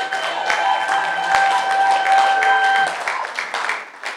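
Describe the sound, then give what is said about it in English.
A church audience claps hands together for the Lord and for the musicians in a loud, sustained burst of applause. The claps are dense and overlapping with a few sharp accents, while a steady sustained musical tone hums underneath before fading. “Clap your hands together for the Lord and clap for our powerful musicians.”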